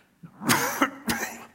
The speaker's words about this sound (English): I'm sorry, I'm coughing a little bit here.